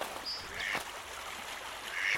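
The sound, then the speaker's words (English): A few short, nasal calls from mallard ducks on the water, a drake courting and mating with a female, and a brief high whistle over a soft outdoor background, with a faint splash in between; the calls are not loud. “Look at the mallards here. The drake is doing a courtship dance for the female in the water.”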